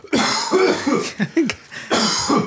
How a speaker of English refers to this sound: Hey! I was choking on my own spit there.